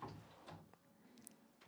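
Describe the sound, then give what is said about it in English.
A few soft, irregular knocks on the door of the Trinity studio, muffled and spaced unevenly, with no one speaking. “trying to knocking break on the door”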